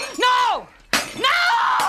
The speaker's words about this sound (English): You broke my Egyptian cat! All right, I broke it. They're more important to you. I'll break them all!